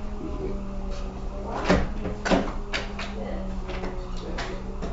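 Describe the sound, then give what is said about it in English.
A door is pulled open and pushed shut, two quick wooden knocks about half a second apart over a steady low hum, with faint voices in the background. “Can you open this door and just see if I can fit in?”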